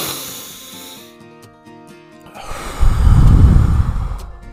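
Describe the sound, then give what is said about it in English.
A slow, deep breath in a breathing exercise: a soft airy intake through the nose, a pause, then a long, heavier exhale blown out through the mouth as if through a straw, with quiet steady musical tones in the background. “So in through the nose, out through the mouth, out through your mouth like a straw.”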